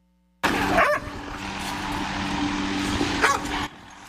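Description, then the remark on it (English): A cadaver search dog barks and whimpers with a couple of short, sharp yelps during FEMA search and rescue operations after the wildfires in Maui, Hawaii, set against a steady, rushing outdoor background noise that cuts off abruptly near the end. “Meantime, FEMA is using cadaver dogs to help with search and rescue operations in Maui.”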